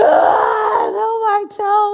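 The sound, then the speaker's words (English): A man's voice mimics the pained wail of a boy who hurt his toe while throwing a ball, a loud drawn-out groaning cry that slides down in pitch, briefly breaks, then resumes as a sustained moan. “Then all of a sudden, he was like, ah, you know, he's screaming.”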